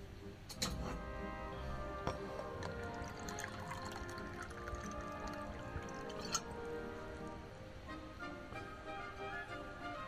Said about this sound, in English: I need a drink of water. Wait a minute. Maybe I could pronounce it after I have a drink of water.